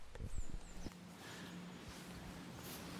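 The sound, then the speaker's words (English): A few soft, muffled hoof thuds of a horse walking on a muddy woodland track on the way to Snowdrop Valley early on, then fading. Birds chirp faintly over a quiet outdoor background. “Oh, there's a horse.”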